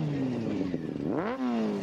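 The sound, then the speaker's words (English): A motorcycle engine idles with a steady drone, then revs up sharply, its pitch climbing before settling into a loud, sustained roar. “You girls like a nice motorcycle?”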